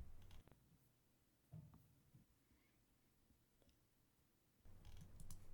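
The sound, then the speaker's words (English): A few faint computer mouse clicks as someone slowly clicks through a chapter, spaced slowly and unevenly over a quiet background tone, with a slightly busier cluster of small clicks and handling noise near the end. “I found the chapter where they talk about it, so I'm, like, slowly clicking through it.”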